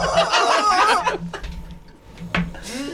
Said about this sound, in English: Do horses have a favorite toy they like to play with? Chickens. Chickens? Rubber chickens. Rubber chickens. Rubber chickens. Squeaky rubber chickens. Squeaky rubber chickens. Squeaky.